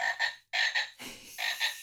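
A toy frog hand puppet, bought at a shop about an hour outside London, croaks in three loud bursts, each a quick double croak, with a short pause between them and no one speaking.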